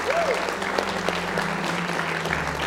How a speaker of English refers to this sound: Why don't you give the Lord a hand clap of praise one more time?